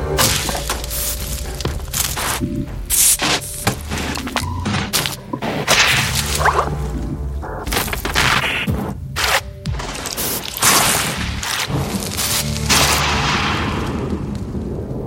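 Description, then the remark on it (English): Rhythmic, sharp whip-like cracks and bursts repeat over a sustained low rumbling drone, forming a loud, layered sound-effect sequence depicting the expansion of the universe since the Big Bang, with no talking. “And there's this moment where you hear the expansion of the universe.”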